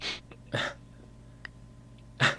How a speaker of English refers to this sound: Bless you. It was a cough, not a sneeze. Whatever. I just sort of turned to sort of do it away from the mic.